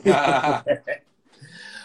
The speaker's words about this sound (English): Sorry, my dog went a little crazy there. No, you're all good. He's agreeing with you. That's right. Thank you, Luna.